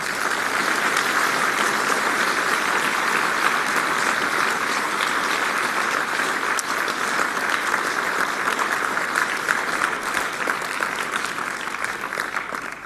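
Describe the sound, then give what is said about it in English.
An audience claps steadily for about thirteen seconds at the close of a session, applauding the work presented, a dense, even wash of many hands with no voices on top, holding its loudness throughout before easing slightly at the very end. “If we could just clap hands for this work.”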